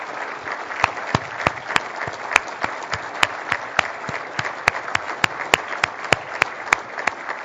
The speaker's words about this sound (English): all of the staff from the Ministry of Energy and all of the staff from the Independent Electricity System Operator, if you could also please stand up for a round of applause. Come on, don't be shy.